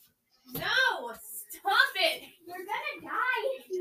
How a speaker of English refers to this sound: Okay, the cat is being really annoying and chewing on the light. If you're wondering why there's so much random yelling, that's the cat.